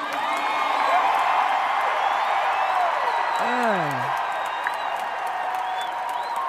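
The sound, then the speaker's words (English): A large crowd yells and cheers in a steady, dense roar for several seconds, with one voice letting out a sliding, wavering whoop partway through before the noise carries on. “And if there's anything you can do about it, I want to hear you yell.”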